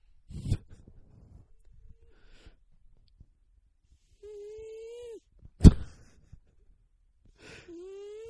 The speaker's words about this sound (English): So that's what we hear all day, every day, is this cat snoring. I've never heard a cat snore. I'm kind of worried about her.